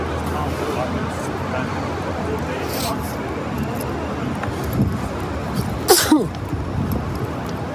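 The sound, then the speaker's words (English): A single sharp sneeze from a person with allergies bursts out partway through, standing out over a steady wash of outdoor city background noise at Bank and Albert streets in downtown Ottawa. “Probably hear me sneezing out here with the allergies.”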